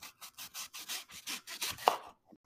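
A knife cutting an apple in a quick series of about a dozen short, scraping strokes, rasping and bright, with a sharper snap near the end and no talking.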